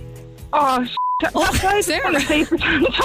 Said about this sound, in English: Beep.